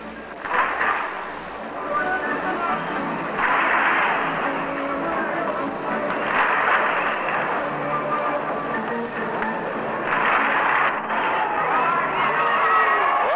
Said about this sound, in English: Goodings has supplied us with a little hand-clapping music.